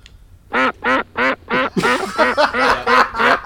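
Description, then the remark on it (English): Someone imitates a duck, giving four evenly spaced, nasal quacks, then a quicker run of about six overlapping quacks. The sounds are loud. “I'm going with Quack.”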